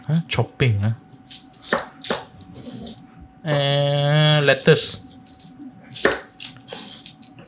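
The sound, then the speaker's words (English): Sharp knife chops on a cutting board as an onion is sliced, coming in an irregular series of crisp knocks, with a brief sustained vocal sound partway through. “So I'm just chopping it here.”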